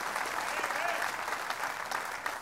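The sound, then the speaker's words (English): An audience claps together as a clap offering to the Lord for the power of his resurrection, a dense, sustained burst of applause, many overlapping hand claps forming a steady bright wash of sound throughout. “Give the Lord a clap offering for the power of his resurrection.”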